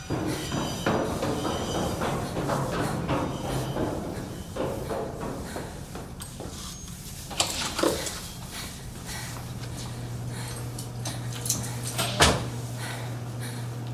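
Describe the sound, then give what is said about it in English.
A large blue door, opened by swiping a card, swings open and later shuts with a solid thud, a few clunks in between, over a steady low hum and busy background noise. “There is a large blue door. Swipe your card and get inside.”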